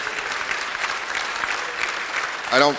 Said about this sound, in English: I thank you for the applause. I don't say it for that.